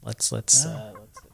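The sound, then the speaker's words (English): A short bird call: a few loud, clucking, chicken-like bursts with a harsh hiss, then fading, warbling notes that trail off within about a second. “There's the bird. That's the bird right there.”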